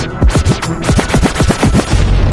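A loud burst of rapid gunfire sound effect from a music track: about ten sharp, booming shots fired in quick, even succession, with no voices over it.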